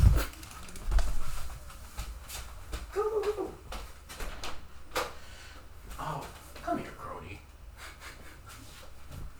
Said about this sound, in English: She's like scratching at the door, so I feel like a pee is imminent.